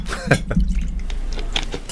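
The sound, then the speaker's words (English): Beer is opened over a trash can and poured, with a few sharp clicks and hisses early on, followed by a steady gurgling, splashing flow of liquid that continues throughout. “So I'll give you that there, and when you pour it, I'm curious on the color.”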